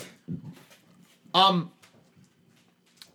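A dog named Peppery snoring: one loud, nasal snort-like snore in the middle, with softer, low rumbling breaths before and after, otherwise quiet.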